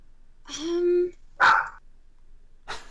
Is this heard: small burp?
no